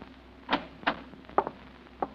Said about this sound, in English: It's 11 o'clock when you finally get back to 1214A Euclid Avenue and fit Oliver's key in the lock on the front door.